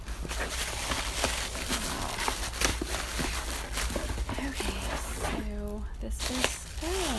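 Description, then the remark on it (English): A rough, ripping scrape of cardboard as the tear tab on a Magic Keyboard box is torn open, fairly loud, with crinkly handling noise throughout; a voice briefly speaks near the end. “This is the magic keyboard, and it also has the little tear tab.”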